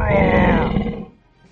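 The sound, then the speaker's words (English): A person voices a loud, throaty roar, imitating a big cat; the growling sound holds steady for about a second and then fades out. “Melian will roar after you.”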